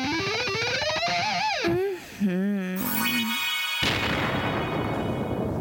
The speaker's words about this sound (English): You like that? You like that Bolt of Thunder? I do love that. That was a recent addition.